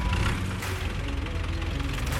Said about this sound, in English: The sound of that tractor means it's time for us to go to work.